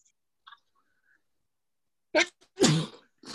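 A forceful sneeze bursts out after a stretch of near silence, with a quick sharp intake leading into the loud explosive blast; another burst begins right at the end.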